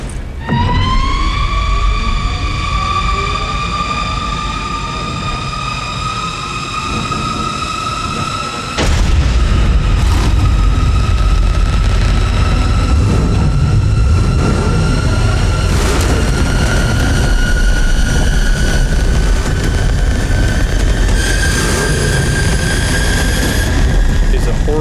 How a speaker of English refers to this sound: I'm going to insert right here. The sound of the Batmobile activating because it is horrifying.